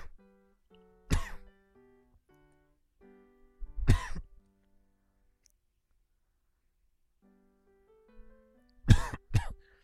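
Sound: coughing and throat clearing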